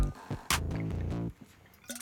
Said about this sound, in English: Let me take a sip of water because my throat is parched.